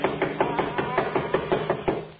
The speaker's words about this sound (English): I'll do the knocking. Doesn't seem to hear us. Oh, he'll hear me.